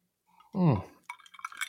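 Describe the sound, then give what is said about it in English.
A voice briefly sounds, then Summer Water rosé wine splashes and fizzes as a heavy pour goes into a glass, with faint clinks over a steady bubbly trickle. “And it's the heaviest pour I could like do without feeling terrible about myself.”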